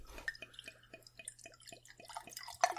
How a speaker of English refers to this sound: Sorry, that was water. That was water. Don't get excited, folks.